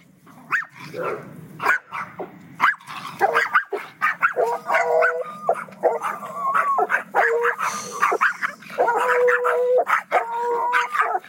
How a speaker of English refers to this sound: Okay, now you're going to hear our two Yorkies, because they're... you know, going off. And then you're going to hear this one that sounds kind of Chewbacca-ish.